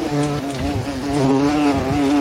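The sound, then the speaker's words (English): A loud, steady insect buzz drones, a deep harmonic hum that wavers slightly in pitch as it hovers, like a large bumblebee. “you hear a loud buzzing sound filling the air around you.”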